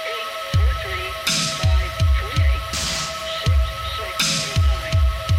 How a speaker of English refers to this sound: Yes, we called it that because there is humming in it